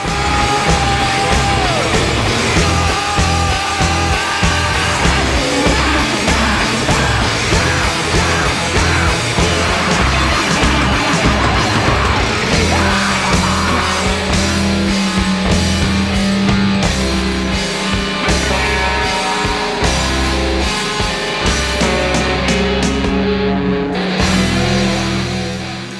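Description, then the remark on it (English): A loud, dense rock song about a mass murderer plays throughout, with pounding drums and distorted guitars forming a steady wall of sound while a male singer screams and wails wildly like a maniac over the top. “And by the end, he's just screaming like a maniac.”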